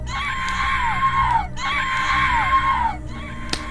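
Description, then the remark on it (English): Two long, piercing shrieks from creatures called night terrors as flames engulf them, one after the other, each holding a high wavering pitch before sliding downward, over a steady low rumble of burning flames. “You also hear the shrieks of the creatures, the night terrors, as the flames seem to be engulfing them as well, with no escape.”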